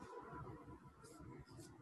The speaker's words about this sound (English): You broke up there for a second.